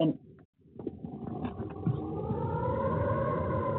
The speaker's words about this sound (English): Now, I don't know if it is completely quiet here right now. The only sound that of tree frogs, the rain has just started to stop right now. And listen to the sound inside the eye.